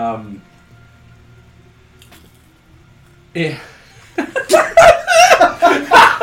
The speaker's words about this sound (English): Wow, sounds really wow. Bless you. Are you? Was that really? That was a sneeze, right?